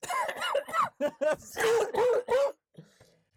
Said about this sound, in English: You gotta leave that one in there. Gosh. You gotta leave that cough in there. I'm still sick.